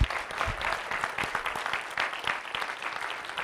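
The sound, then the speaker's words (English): An audience claps steadily for a speaker, a dense, continuous patter of many hands sustained for a few seconds without pause. “Let's give her a good round of applause.”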